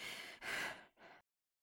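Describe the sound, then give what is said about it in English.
Three quick, heavy breaths puffed out, a person imitating Bane Raven panting when the music stops at the end of a stage performance, breathy and loud, then silence. “So there's like a moment when the music stops and Bane Raven is panting.”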